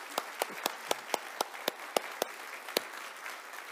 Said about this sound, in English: We now welcome you as disciples with us here at Desert Hills Lutheran Church. May we all be blessed by this relationship and grow together as a body of Christ. I invite you to give a round of applause.